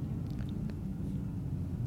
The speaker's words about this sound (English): All those planes flying. Yesterday, those planes were coming into the airport, picking up the water, and so sounds like they're still at it.